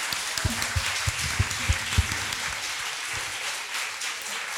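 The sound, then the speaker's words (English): An audience applauds the panelists at the end of a session in a steady, dense wash of clapping, with a few sharper individual claps standing out early on before the sound settles into an even patter. “A big round of applause for our panelists, please.”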